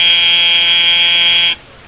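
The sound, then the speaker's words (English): A loud, steady electric school class buzzer drones continuously for about a second and a half, then cuts off abruptly, leaving faint room tone. “The three of us waited until the buzzer sounded.”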